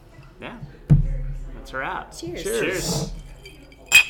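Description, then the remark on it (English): Voices chatter and laugh, then a bright, brief clink of glasses rings out near the end, short, like a toast. “Cheers.”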